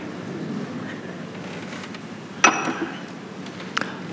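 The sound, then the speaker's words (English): A glass of water is set down and handled, giving a sharp ringing clink and then a softer knock a moment later, over a quiet hum with no talking. “Thank you, Vincent, for the water. I'll need it. Cheers.”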